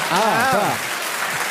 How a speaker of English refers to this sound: The other people are clapping now. They hate the people who are clapping first.